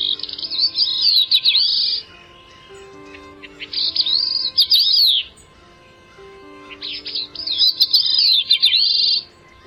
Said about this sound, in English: It's Catharus bicknelli, the Bicknell's thrush. Today's Talkin' Birds featured feathered friend.